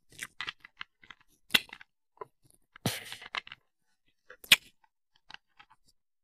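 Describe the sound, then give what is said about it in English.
Loud crunching of a hard honey lemon throat drop being chewed, sharp cracking bites at an irregular pace with quieter clicks and mouth sounds between them, no talking. “Anyway, as my voice is cracking to a squeaky door raspiness, and I'm attending a theatrical play tonight, being a public enemy is definitely on my today's wish list, so I better chew on this honey lemon throw drop.”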